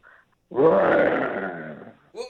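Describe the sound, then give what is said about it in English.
A lion gives one loud roar lasting about a second and a half, rough and rumbling before it tapers off, with brief snatches of voice just before and after. “That's a lion, and I probably couldn't get one of those, just to let you know.”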